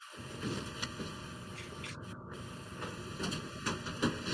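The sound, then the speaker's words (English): A printer runs steadily, a continuous mechanical whir with fan-like humming tones and small clicks and shifts in pitch as its motors move, with no talking. “Printer on.”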